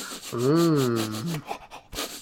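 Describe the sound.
A person imitates a police dog named Bark sniffing someone: a drawn-out nasal, whining hum, then a few quick, breathy snuffling sniffs in an uneven rhythm, fairly loud with no words.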